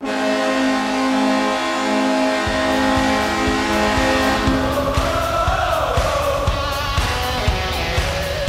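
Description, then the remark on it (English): A New York Islanders hockey goal horn blares in one long, loud, sustained blast with a rich, buzzy tone that wavers slightly near the end, over a noisy roar from the crowd. “They actually had a terrible horn when they first moved there.”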